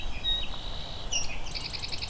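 A distant swamp sparrow sings a slow, even trill of repeated notes, faint against steady outdoor background noise, with a few thin whistled bird calls just before it.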